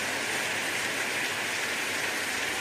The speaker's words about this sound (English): And the rest of us, let us do what God created our hands to do, to clap for Him. Let's clap for Him. Let's clap for Him.